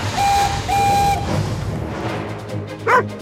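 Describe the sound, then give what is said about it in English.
Two steady whistle blasts sound first, then after a pause a single short dog bark rings out near the end, fairly loud over a low rumbling background. “Just follow that dog.”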